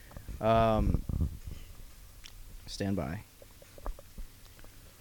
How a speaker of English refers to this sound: I'm going to take this microphone off the stand. So if you're listening and you hear rustling around, I apologize, but it just is what it is today.